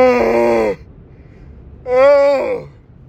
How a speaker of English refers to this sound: I've been trying to hide yawns. I can't stop yawning. Oh, I'm pretty sleepy.